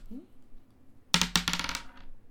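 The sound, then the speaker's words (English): After a quiet moment, dice rolled for damage in a tabletop role-playing game tumble across a hard tabletop in a quick burst of bright, rattling clicks that bounce a few times and then settle to a stop. “Okay, go ahead and roll damage.”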